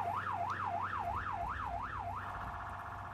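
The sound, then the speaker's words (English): An arriving ambulance's siren wails in a rapid rising-and-falling sweep, about five quick cycles, then shifts to a steadier warbling tone, loud, over a low rumbling engine-like background with no talking. “It didn't take long for the ambulance to arrive and bring Robert's body out of cool.”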